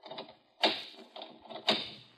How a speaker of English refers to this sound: Okay, nothing. The door still don't open. Don't? You must have returned one of the two locks you'd already unlatched instead of getting the third one you missed.